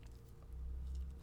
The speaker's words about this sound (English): Can you hear Marzi just licking me right now?